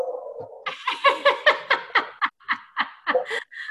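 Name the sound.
dog noises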